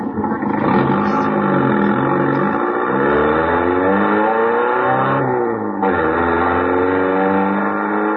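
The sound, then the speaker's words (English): A sports car engine fires up and revs loudly, its pitch climbing and dropping through several throaty surges with no voices present. “All right, now get the car started.”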